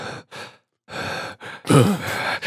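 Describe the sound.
Heavy mouth breathing: five or six loud, ragged in-and-out breaths in quick succession, the last ones turning into strained, voiced gasps, as if someone is imitating panting while working out.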